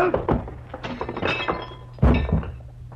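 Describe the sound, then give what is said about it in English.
A man's heavy body slams down onto a coffee table with a loud thunk, followed by breaking wood and clinking, rattling glass and objects scattering, then a second crashing impact near the end. “sprawled all over his coffee table, as limp as a 5-cent salad.”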